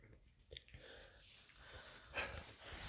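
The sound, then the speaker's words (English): A man yawns, soft and breathy and drawn out, rising to a brief airy peak with a faint squeaky whine near the end; quiet throughout, with no talking. “Look at you yawning as well.”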